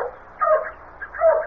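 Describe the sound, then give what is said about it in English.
A dog at a home barks twice in quick succession, each bark a short, mid-pitched yelp separated by a brief pause, moderately loud with no talking. “I'll get the dog quiet.”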